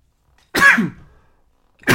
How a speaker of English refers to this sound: Woo! There go the sneeze I was telling y'all about.